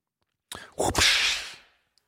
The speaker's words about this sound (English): Well, there's the, you know, swoosh. It might have the, it might just be a question mark and then an exclamation point. Swoosh?